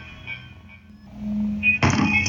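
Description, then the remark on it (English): A low, quiet hum gives way to a sudden loud, heavy thudding against a bedroom wall at night near the end, a dull booming impact that rings on briefly. “Pounding on his walls.”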